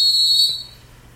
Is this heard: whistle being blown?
yes